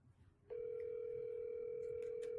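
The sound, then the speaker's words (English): After a brief quiet moment, a steady electronic ringback tone of an outgoing phone call to the caller's mother starts and holds unbroken to the end, clear and fairly loud, with no one speaking. “So let's go ahead and see if I could get my mom on the phone.”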